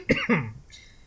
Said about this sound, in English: Excuse me, guys. Holy crap. Yeah, I've been coughing the last couple of days.